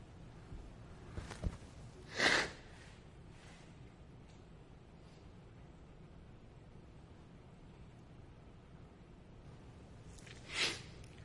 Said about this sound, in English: Excuse me, I have to blow my nose. I can't hardly breathe.